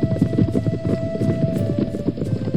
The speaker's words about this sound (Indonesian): Tiba-tiba terdengar langkah-langkah kaki binatang mendekat, pemburu pun mulai siaga, penuh ternyata, ah, kijang.